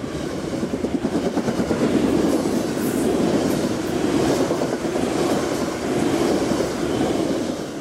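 A passenger train approaching Eugene, Oregon, rumbles steadily along the rails, heard from onboard, with a continuous loud low roar and a faint rhythmic clatter of wheels on the track.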